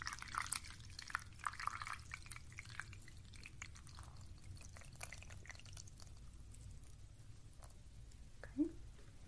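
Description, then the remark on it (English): Hot water for tea pours steadily into a cup with a soft, continuous trickle and scattered light splashes, fairly quiet, ending with a brief higher-pitched sound near the finish. “I have some hot water.”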